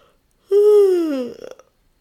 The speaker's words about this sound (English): So we're going to just get into our breath for a second, finding some space between your ribs by reaching up on one side and yawning.